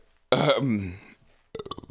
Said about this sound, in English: Oh, God, sorry, I had to get that fucking ham and cheese burp out. One more. That was porky.